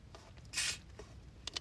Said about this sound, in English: Take a quick sip of some Mountain Dew.